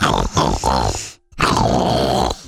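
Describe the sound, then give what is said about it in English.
A voice imitates the loud, rumbling snores of a big whale, two long grunting breaths separated by a brief silence, forceful. “But after they had fallen asleep, … started snoring again.”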